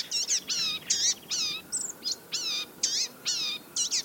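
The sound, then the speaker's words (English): A blue-gray gnatcatcher gives a steady series of about ten thin, nasal, wheezy call notes, each short and high-pitched, repeating at a quick, even pace with no voices present. “Blue-gray gnatcatchers are little birds that can be hard to spot as they forage busily amid dense leaves overhead.”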